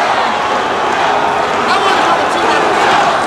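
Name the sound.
arena crowd noise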